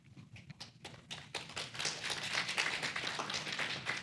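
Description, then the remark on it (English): An audience applauds: a few scattered claps at first, quickly swelling into dense, steady applause from many hands that stays loud through to the end, with no voices. “It's worthwhile to clap, isn't it?”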